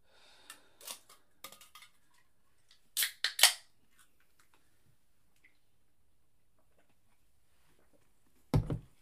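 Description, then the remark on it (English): A San Pellegrino sparkling water being opened: faint clicks and rustling, then a sharp crack with a brief bright fizzing hiss, and later one loud thump. No one speaks. “Hold on, I'm gonna get some San Pellegrino, guys.”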